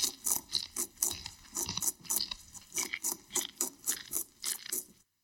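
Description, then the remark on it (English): Crunchy munching on leafy garden plants, a steady run of about a dozen quick, rhythmic bites and crunches, fairly loud, with no voices. “And tippy, tippy, tippy, pat, dig, scrabble, scratch, scratch, spring, hurdle, dash, dash, muncha, muncha, muncha.”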